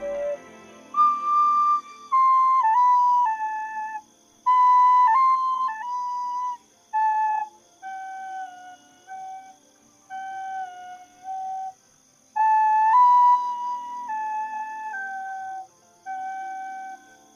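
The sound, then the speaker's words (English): A homemade ocarina carved from a carrot and tuned to G plays a breathy, whistle-like melody of sustained notes in phrases, stepping down in pitch with short pauses between them, loud and alone with no talking. “Now, listen to your carrot sing.”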